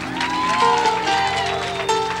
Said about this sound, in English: Well, if you got victory in the house, clap your hands.